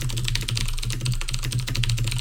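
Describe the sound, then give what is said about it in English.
Rapid, steady clatter of typing on a mechanical keyboard during a quick Google search, fairly loud, with many crisp key clicks in quick succession over a low constant hum, no voices. “This is some quality mechanical keyboard sounds.”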